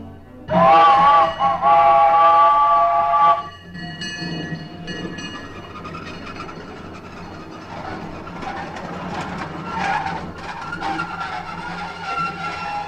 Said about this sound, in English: Right now, we're standing in the railroad station near the entrance to Disneyland, just off the town square. The old train is coming, and Walt's right on board. Listen, you can hear it whistling in the distance.